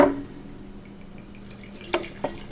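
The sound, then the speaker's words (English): Canadian whiskey being poured into a glass: a soft liquid splash at the start, a quiet stretch, then two sharp drips near the end, with no talking. “Pour up.”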